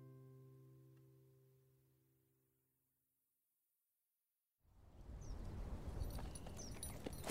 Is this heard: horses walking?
yes